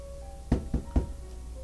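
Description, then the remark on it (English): Three dull knocks on a wooden tower door emblazoned with an eye, evenly spaced, with a faint steady hum in the background and no talking. “I want to go knock at the door.”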